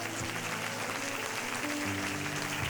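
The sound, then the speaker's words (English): An audience claps steadily for Moses, a dense wash of many hands that fills the room for a few seconds, with a faint sustained organ-like tone underneath. “Clap your hands for Moses.”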